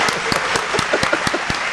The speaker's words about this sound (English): Real claps on that one. Real claps.